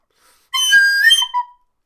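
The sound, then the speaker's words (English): A loud, piercing whistle holds steady for about a second before ending in a brief, slightly lower trailing note. No voices are heard. “And he whistles.”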